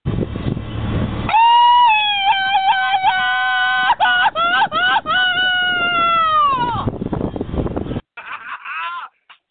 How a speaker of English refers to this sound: That calls for the Mexican Yell, baby!